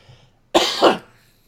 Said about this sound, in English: So this cough, damn it.